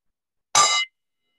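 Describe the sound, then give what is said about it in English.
A single sharp metallic clang as a coffee cup accidentally knocks against a gong, ringing brightly for about a third of a second and then cutting off into silence. “My coffee cup hit the gong.”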